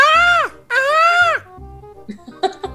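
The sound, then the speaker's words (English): A person imitates a peacock with two loud, high, wailing calls that rise and then sag in pitch, followed by a few softer breathy sounds. “Do you want to hear my peacock? Yes, let's hear your peacock.”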